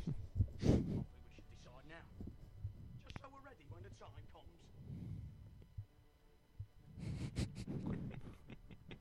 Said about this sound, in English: Hey, that's him. He's breathing. I was going to say, you're breathing right in your mic.